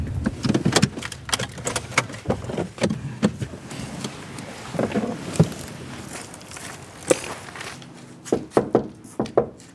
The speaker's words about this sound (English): While I was knocking on the door